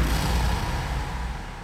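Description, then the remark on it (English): A deep, rumbling explosion boom rolls out loud, its heavy low-end roar sustaining and slowly fading over a couple of seconds, with no voices. “When we hear the words Big Bang, many of us instantly assume it was an explosion in the traditional sense. You know, boom, flame, smoke, destruction.”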